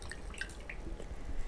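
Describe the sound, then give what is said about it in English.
Very light pink rosé wine being poured into a glass, a quiet, uneven trickle with small dripping splashes over a low background hum, no voices. “Look at that pour. This is a very light pink.”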